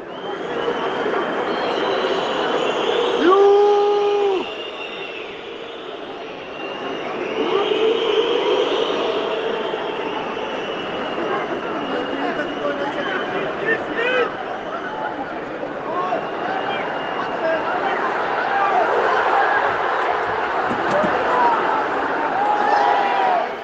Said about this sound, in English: But then, and at this stage, the stadium is swelling with boos and chants all over the place. Counter chants. Beşiktaş kimsenin çiftliği değil.